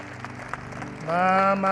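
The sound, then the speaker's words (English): A church audience applauds for God at the close of a prayer with a steady wash of clapping, and about halfway through a loud sustained tone swells in and carries on over the applause. “Come on, give God a round of applause, everybody.”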